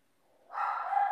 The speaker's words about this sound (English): My dog's going crazy downstairs. I might have to go deal with that in a minute.